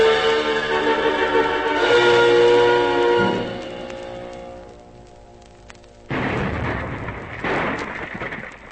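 Shellfire explosions from a gun on a submarine: a low, steady droning rumble with tonal whine fades out, then two loud, crackling blasts burst in and rumble on. No one speaks.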